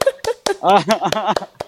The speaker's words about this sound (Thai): โอ้โหปรบมือให้เลย